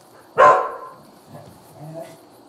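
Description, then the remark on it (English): A single sharp bark from a female foster rescue dog, followed by a quieter, shorter bark-like yip a moment later, with faint background noise in between. “How long had your dog? Oh, she's actually a foster.”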